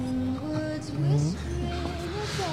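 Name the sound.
car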